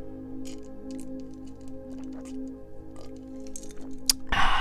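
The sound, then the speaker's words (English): Wet sipping and gulping of drinking water, a string of small mouth clicks and swallows over a steady low hum, ending with a sharper click and a louder burst. “So, with that said, you would think that I would get a sip of water before I start talking again. But I need another drink of water.”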